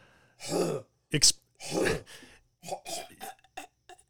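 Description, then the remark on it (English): A person loudly imitates their dog's harsh, hacking cough, a dog with COPD, with a few raspy throat-clearing bursts, followed by several shorter choppy vocal sounds. “That was actually a really good impression of your dog.”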